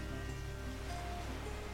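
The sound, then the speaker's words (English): Ocean surf washes in a steady, quiet roar with no single crash standing out, a continuous rumble and hiss that stays even throughout, as waves crash upon each other and throw salt water into the air as a fine mist. No one speaks. “Looking out into the ocean, we watch the waves crash upon each other, spitting salt water into the air, creating a fine mist.”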